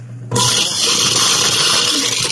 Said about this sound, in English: ASMR is coming to people using garbage disposals as ASMR. Just like imagine hearing this. ASMR, dishwasher, and disposal sounds.